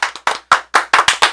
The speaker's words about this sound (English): Thank you. I'm never early. That's why we gave you the round of applause.